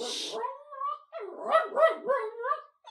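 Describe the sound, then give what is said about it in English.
A dog that was lying in bed gets up and barks in a quick series of high, whiny barks and yips, with a short breathy rustle just before it starts. “He's just in bed, and then he got up and started barking.”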